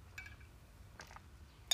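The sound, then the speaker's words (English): Three soft glass clinks while someone gets a drink of water, spaced out over a couple of seconds, with light ringing tones and a brief rattle, over a low steady hum. The last clink is the sharpest. No one speaks. “I need a drink of water.”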